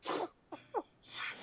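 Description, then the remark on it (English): A sneeze: a harsh, breathy burst, a couple of short catches of breath, then a second forceful noisy blast trailing off. No one talks. “Bless you”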